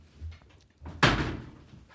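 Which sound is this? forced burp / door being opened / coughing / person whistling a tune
door being opened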